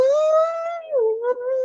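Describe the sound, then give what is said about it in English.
A person imitates an elephant trumpeting with one sustained, brassy, wavering cry that dips in pitch partway through. It is fairly loud and alone, lasting under two seconds. “Now you've gone into the elephants from the Jungle Book.”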